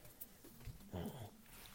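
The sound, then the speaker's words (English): A dog gives a short, quiet vocal burst, a brief whine-like sound in the middle of an otherwise low, muffled background with no one talking. “I'm going to beat this mess at this dog in a few minutes.”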